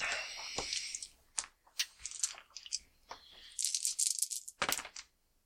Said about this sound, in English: Make a perception roll. Difficulty. Can you pass the dice?